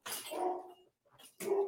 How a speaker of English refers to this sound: We've all had toxic moments, and there is my dog barking away.